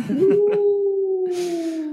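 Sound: wolf howl sound effect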